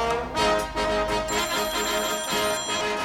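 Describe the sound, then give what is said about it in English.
A telephone rings steadily and loudly for about three seconds during an outgoing call, a bright electronic tone pulsing, with no voices over it. “Just give me the phone.”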